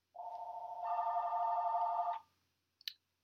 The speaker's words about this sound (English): Just a moment, please. All right, we're back. We had a phone interruption.